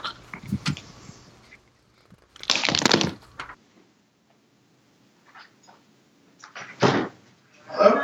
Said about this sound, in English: Somebody's knocking on my door. Hold on.